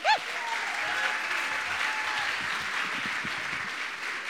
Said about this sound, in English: So let's give a huge, welcoming, supportive round of applause